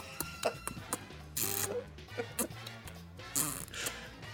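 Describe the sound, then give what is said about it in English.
An irregular run of wet kissing smacks mixed with little nibbling sounds, mostly short and clicky with a couple of longer, hissier ones, over a low steady hum. No one speaks. “Are those chewing or kissing noises? I was kissing.”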